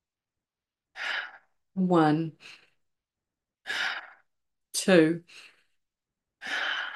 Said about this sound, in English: Breathing in.